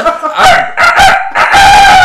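A rooster crows loudly and close by, one strained call broken into three rising, drawn-out bursts, with the last syllable held longest. No one talks over it.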